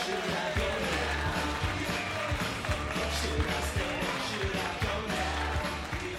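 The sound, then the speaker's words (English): A comedy show audience in Manchester applauds loudly and steadily for several seconds as the next comedian is introduced on stage, a dense wash of clapping with heavy low thumps pulsing underneath throughout. “If you could, start the applause among the stage,”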